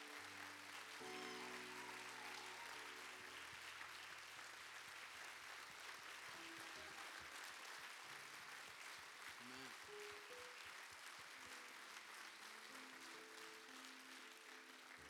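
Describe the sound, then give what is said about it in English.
A church audience claps steadily throughout in appreciation of their pastor, a dense, sustained roar of applause with low organ or keyboard chords sounding underneath. “Can we clap our hands, thank him, and appreciate him?”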